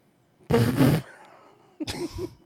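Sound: fart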